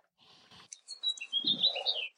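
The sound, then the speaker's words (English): Birds chirp and tweet outdoors in a quick, overlapping burst of high, bright calls, moderately loud, with a soft low rustle beneath. No one speaks. “I hear you got some birds going on too.”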